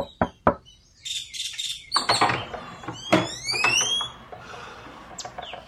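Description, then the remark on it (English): A couple of sharp knocks on a front door early in the morning ring out, followed by a few more scattered raps while birds chirp and tweet brightly in the background. No one speaks. “Early the next morning, there's a rap on the front door.”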